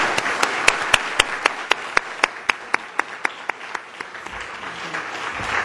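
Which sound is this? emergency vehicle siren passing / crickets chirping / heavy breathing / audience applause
audience applause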